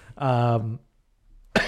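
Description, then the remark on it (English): A short voiced groan is followed by a pause, then a sudden harsh cough bursts out at the very end, loud and abrupt. “Why is it every time we come down here, I've got this stupid cough?”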